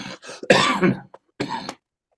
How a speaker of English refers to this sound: Sorry, my cough.